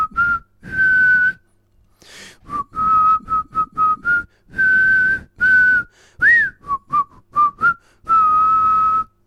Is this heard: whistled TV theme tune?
yes